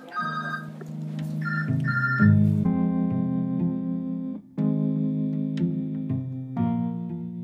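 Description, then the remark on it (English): A front desk telephone rings at lunchtime inside a crowded shelter with a steady electronic tone, its pitch stepping between a few sustained notes like a simple melody. It plays continuously at moderate volume with no voices. “Their expressions were melancholic as they talked to each other over the sound of the front desk phone ringing.”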